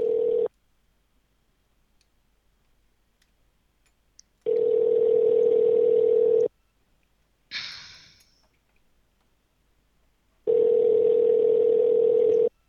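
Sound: phone call ringing unanswered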